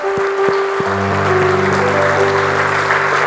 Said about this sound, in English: And the church says, can you give the Lord a hand clap? Hallelujah.